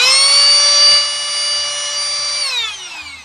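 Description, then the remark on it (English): A loud, high-pitched motorized whine from a rechargeable electric air duster blows steadily, then its pitch drops as it begins spinning down near the end, with no one talking over it. “It's that fucking loud. It's like a jet engine. And it blows pretty good. But it is like a can of air.”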